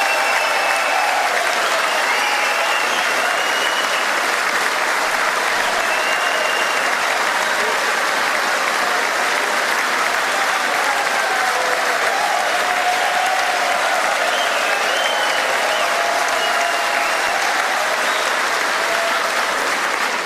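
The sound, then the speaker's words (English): A large congressional audience at the State of the Union address applauds steadily and loudly for about twenty seconds, a dense wash of clapping with scattered cheers and shouts rising through it, no clear speech on top. “Everyone's cheering for this one. This is, like I said, one of the loudest points of the State of the Union address.”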